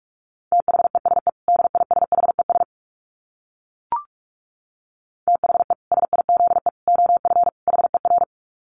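Rapid Morse code at about 45 words per minute: a steady mid-pitched beep keyed in quick dits and dahs, sent in two bursts separated by a short pause with a single faint click.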